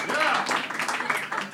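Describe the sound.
A live audience claps and cheers as a vote by round of applause, in a steady, dense wash of sound that lasts the whole moment, with shouting voices mixed into the applause.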